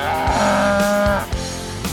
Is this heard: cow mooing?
yes